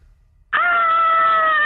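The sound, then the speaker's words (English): A voice imitates the high, excited scream that girls in a club make when a song comes on and they rush into the main room: silence, then a sudden loud sustained shriek with a steady pitch, holding for over a second without any talking. “they're all rushing into the main room and they're all screaming.”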